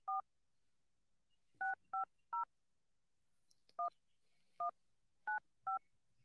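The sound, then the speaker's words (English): A series of eight short, clear touch-tone beeps from a phone keypad being dialed to place a call, spaced irregularly with brief pauses between them, distinct with no talking. “Okay, I'm gonna try calling.”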